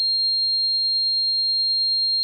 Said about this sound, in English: All right, so the last one I found was, if we did God, we got to do hell, people. This is the frequency of hell. This is actually 4,200 hertz.